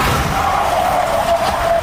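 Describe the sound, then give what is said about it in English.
A truck crash: a loud, continuous roaring rumble with a steady whining tone that slowly sinks in pitch, plus a few faint knocks near the end. No one speaks. “I mean, that crashing sound is bro, this dude's going wild.”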